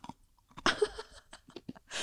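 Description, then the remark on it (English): Someone crunches ice between their teeth: a string of irregular, crackly bites, one louder burst among several softer crunches, with no talking. “Sorry, I'm chewing ice.”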